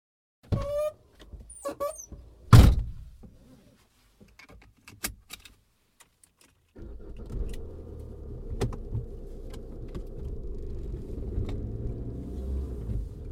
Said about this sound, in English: We're hurtling through the city in my car, and she's hurtling through the snapshots on replay in her mind.